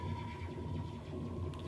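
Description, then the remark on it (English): A horse whinnies with a wavering, descending call in a song intro, over a steady musical backdrop with a sustained tone and low rhythmic bass, filling the short stretch at moderate loudness without any talking. “Like, the horse is like...”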